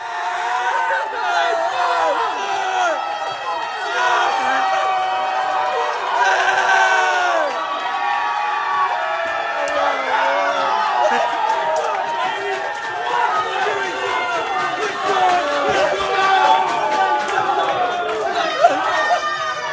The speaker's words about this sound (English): And then, as you said, watch party in Ollie's, place goes absolutely crazy, but don't take my word for it. Let's see what the reaction was like after the final buzzer sounded.